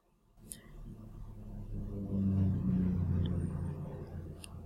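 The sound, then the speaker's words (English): A low, droning rumble of an airplane passing overhead, swelling steadily in loudness with a faint humming tone and holding strong toward the end. “This plane is driving me crazy.”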